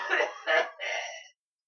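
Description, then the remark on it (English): Three quick, rough coughs in a row, fairly loud, the last one dragging out a little longer and breathier before silence. “You cough don't sound that bad.”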